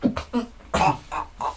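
A fairly loud fit of persistent coughing: five or six short, harsh bursts in quick succession with brief gaps between them, and no talking.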